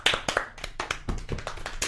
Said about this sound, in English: 50 episodes deep. Can you believe it? I can't believe it. Round of applause in the studio.